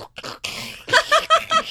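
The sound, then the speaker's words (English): A voice imitates the sound a hagfish might make: a wet, gurgling blorp, a few sputtering bursts with a slimy, nose-blowing quality, loud and alone without any words. “They just like, when you blow your nose, that's the noise that they make.”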